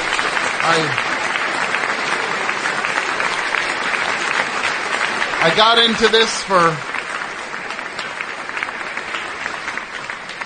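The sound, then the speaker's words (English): Loud, steady audience applause roars for the whole stretch, a dense wash of clapping, while a man speaks briefly over it a couple of times. “I didn't get into this for the applause.”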